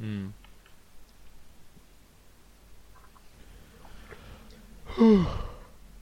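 A big yawn, one loud breathy vocal sweep falling in pitch, after a few seconds of quiet background with faint small clicks.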